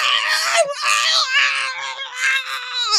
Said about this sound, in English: Yeah, while she's being saved, while he's screaming. And he is just screaming into the fucking camera.